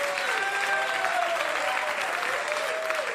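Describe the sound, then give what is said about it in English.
A crowd applauds steadily for a few seconds, a dense wash of clapping hands that stays loud throughout, with faint whistles or cheers riding on top. “Don't clap.”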